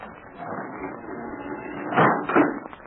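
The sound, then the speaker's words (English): A heavy wooden trap door in the kitchen floor of a tavern is hauled open: a steady scraping creak builds, then two louder knocking thuds near the end as it swings up. “There, a trap door in the floor was raised.”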